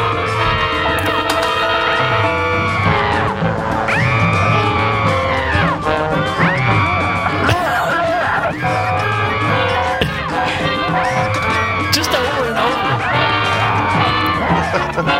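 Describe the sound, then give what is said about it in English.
A woman's high, wavering scream from a film repeats in a tight loop, roughly every two seconds, loud and unchanging, over a steady low rumbling background. “But this loop to me is just hilarious, because it's just so obvious. It's the same scream over and over and over.”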